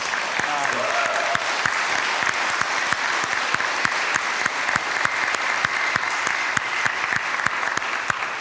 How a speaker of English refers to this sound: So really just, I feel like we should just clap for this.